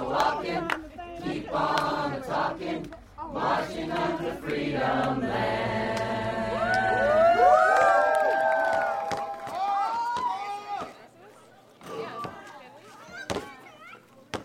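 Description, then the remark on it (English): Kids shout and call out to one another while playing basketball outdoors near Brown Chapel in Selma, overlapping voices rising and falling in pitch, with occasional sharp thuds cutting through the lively, steady crowd noise. “leads us past kids playing basketball to an old cement slab behind Brown Chapel.”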